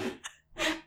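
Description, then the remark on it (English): A chair creaks twice in quick succession: a short, rough, grainy groan, a brief pause, then a louder, breathier creak that fades out. No one speaks. “Sorry. That was my chair.”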